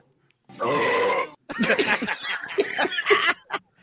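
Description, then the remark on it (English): A long, loud, rumbling burp lasting about a second, played back from a recording, followed after a brief pause by a burst of snickering laughter. “You need to burp.”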